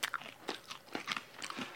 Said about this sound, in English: They're very woody, aren't they? They're very woody. Like MDF. It's like chewing on rosemary-enhanced MDF.